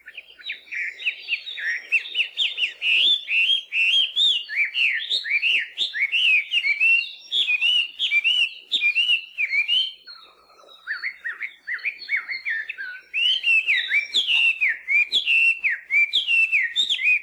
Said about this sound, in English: Melodious laughing thrush are native to southern China and southern Asia and were first brought here as cage birds by cane workers from China in the late 1800s.